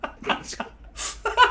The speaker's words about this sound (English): Gesundheit. Gesundheit to all of you.